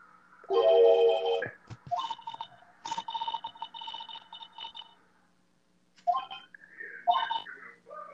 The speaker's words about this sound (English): the alarm is still on. Turn off the damn alarm, man!